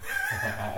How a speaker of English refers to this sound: Any odd noises you want to throw in there, kitty cat?